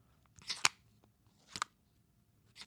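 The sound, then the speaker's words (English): An LG Wing smartphone screen swivels open with three short, bright mechanical snaps, the first pair close together and louder, then a quieter click after a pause, with no voices. “Swivels. Yeah, it doesn't sound as nice as purely microphone-wise.”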